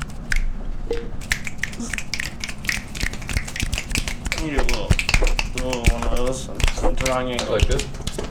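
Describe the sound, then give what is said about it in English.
Rapid, irregular finger snaps crackle in a steady flurry as people snap instead of clapping, with voices chattering and laughing underneath and some sing-song talk toward the end. “Yeah, beatniks do that. They snap like,”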